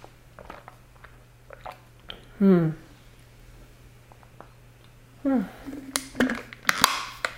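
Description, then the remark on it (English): A person takes a drink, with two distinct swallowing gulps a few seconds apart, followed by wet mouth clicks and smacking sounds against a quiet background hum. “So let me just get a drink. You'll hear me gulp, and hey, I'm human.”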